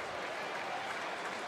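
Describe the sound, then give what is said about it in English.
Steady clapping from the dressing room at the Oval cricket ground as two batsmen reach a 200 partnership, a dense, crackling wash of many hands at an even, moderate loudness, with no voices standing out. “They get a round of applause from the dressing room as well.”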